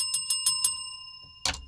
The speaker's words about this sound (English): Then I was really interrupted by the bell.